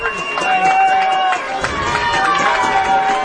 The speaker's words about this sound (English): The Episcopal crowd showing support for their defense now.